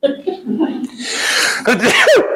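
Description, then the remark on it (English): A single fairly loud sneeze comes after a short voiced intake of breath and bursts into a rough, airy blast, then trails into a brief laugh. “Oh, sorry, that more manly sneeze.”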